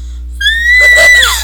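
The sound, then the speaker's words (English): A strained, squeaky attempt at whistling: one thin, high tone held for about a second before it cracks and trails off, fairly loud with no talking. “If I try to whistle, it'll sound like I'm squeaking.”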